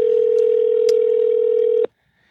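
A phone's outgoing ringing tone sounds once as a steady, clear electronic hum, holding for nearly two seconds before cutting off abruptly into near silence.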